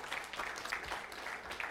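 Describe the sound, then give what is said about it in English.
A church audience applauds the people who fixed the technical difficulties, many hands clapping in a dense, steady patter that stays fairly soft and even throughout, with no voices on top. “If you guys wouldn't mind just humoring me for a minute and giving Kyle and Leonard and Brent a round of applause just for figuring that out.”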